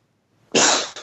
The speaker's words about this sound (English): Oh, you can't sneeze just once. It's weird. You don't sneeze properly.